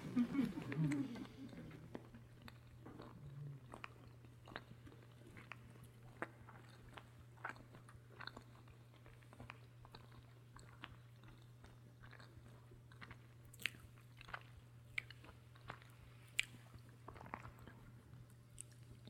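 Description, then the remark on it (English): Slow chewing: soft crunches and moist clicks at an unhurried, irregular pace over a steady low hum, with a brief murmur of voice at the very start. “When you get ready, chew it.”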